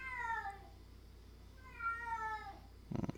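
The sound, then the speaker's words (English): A cat meows twice, each a drawn-out, falling cry, followed by a brief low rumble or thump at the end; no talking. “The cat thinks our idea is really dubious.”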